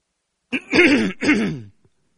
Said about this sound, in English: I have to cough.